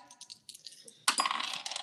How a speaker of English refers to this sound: Oh, wow. The dice are feeling pretty generous today.